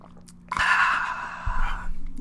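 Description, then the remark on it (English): A drawn-out sip of a tangerine-flavored drink, a wet hissing slurp lasting about a second and a half, with no one talking. “I'm getting ready. I'm sipping.”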